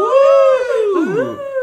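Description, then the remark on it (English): Wolves howl together in long, wavering tones, their overlapping voices sliding up and down across one another, loud and unbroken for a brief moment with no talking. “They're howling”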